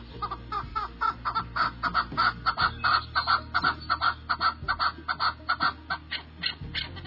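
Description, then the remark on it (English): A chukar partridge gives a loud, rapid series of clucking chuck calls, repeated in quick rhythmic bursts that rise and fall like raucous cackling laughter, with no talking. “The old chucker will make a fool out of you and then laugh out loud.”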